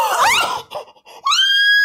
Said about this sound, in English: What? I screamed. That is infinitely more terrifying.